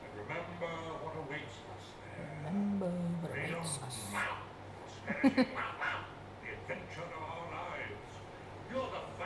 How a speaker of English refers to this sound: Look at the dog! What is the dog saying?